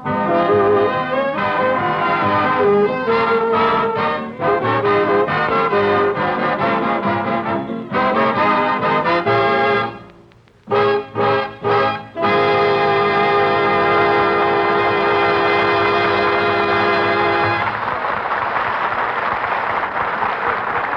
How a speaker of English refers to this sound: That was …, played by the orchestra.